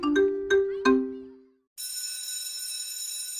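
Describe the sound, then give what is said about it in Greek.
A bell rings at Solidarity Now: three quick, clear chime strikes whose tones fade away, then a sudden steady electric ringing that buzzes on loudly and continuously to the end. “Το Solidarity Now χτυπάει το κουδούνι.”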